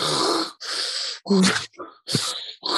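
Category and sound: vocal imitation, imitated heavy raspy breathing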